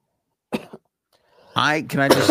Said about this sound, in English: Are you fucking coughing up a lung? Still coughing.